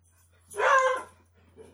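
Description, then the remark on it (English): A pet dog lets out a single drawn-out, tonal bark, moderately loud, followed by quiet with a faint steady low hum underneath. “Brody disagrees. My dog.”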